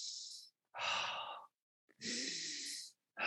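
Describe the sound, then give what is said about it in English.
Slow, deep breaths: a long airy inhale and exhale, then another, separated by short silences, with no talking. “But yeah, I mean, you know, I do some deep breathing.”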